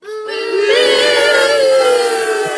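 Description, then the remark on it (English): A chorus of preschoolers taught by Xanthi booing in one long, sustained, wavering jeer, high-pitched and fairly loud, rising slightly in pitch early on and holding steady for a couple of seconds. “Those are all those, Max, those are all those preschoolers that Xanthi teaches. They're booing you.”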